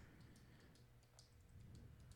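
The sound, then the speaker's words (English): A ballpoint pen clicks repeatedly at an uneven pace, sharp little ticks against a low steady hum, fairly quiet, with no one speaking. “Stop clicking that fucking pen.”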